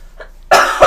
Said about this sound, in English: I just wanted to let you get your cough out. She's out of the game. Now it's up to you to not cough.